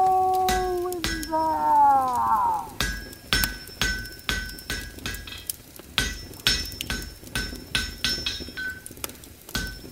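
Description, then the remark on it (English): A blacksmith's hammer strikes metal at a forge at dusk in a steady rhythm of sharp ringing clangs, each blow leaving a bright tonal ring, with a sustained metallic resonance sweeping upward early on, fairly loud. “As the sun sank into the west, the sound of the smith's hammering still echoed through the dusk.”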